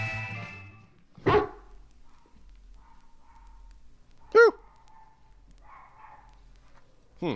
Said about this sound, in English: There's another dog in the background.